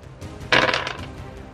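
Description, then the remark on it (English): A short burst of clattering as dice are rolled across a table during a tabletop game, a quick cluster of clicks that fades within half a second, fairly loud with no voices. “Ooh, hot dice. Two. There we go.”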